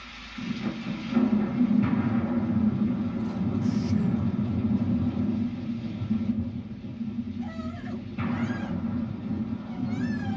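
Deep, rolling thunder rumbles steadily through the whole stretch, heavy, as rain is starting. Near the end, a cat lets out a couple of short, rising meows over the low roar.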